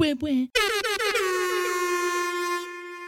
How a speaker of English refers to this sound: Put some air horn in here.